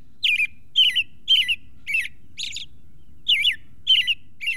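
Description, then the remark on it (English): An American robin sings in February, in winter, a steady series of clear, warbling phrases, each short and bright, repeated at a relaxed rhythm with a brief pause midway, heard alone over a faint low background hum. “Even now in February, when the air outside is brittle and painful, warmth rides the rhythm of an American robin.”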